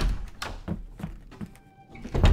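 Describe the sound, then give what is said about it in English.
A door opening, with a handful of dull wooden thunks and rattles, a brief thin squeak partway through, then a heavier knock at the end. No one speaks. “His hat was off before he opened the door, his comforter too.”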